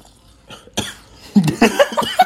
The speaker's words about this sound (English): That wasn't me coughing about the thing. I choked on my breeze pen.